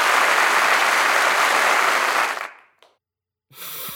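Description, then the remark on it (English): Loud, dense crowd applause fills the first two and a half seconds, then fades quickly to silence, broken by a single late clap before another noise starts at the end. “There was like one last clap at the very end.”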